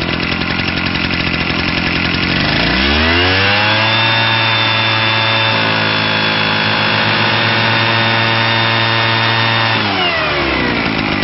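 A loud leaf blower sound effect roars up to speed, holds a steady high whine for several seconds, then winds back down, without any talking.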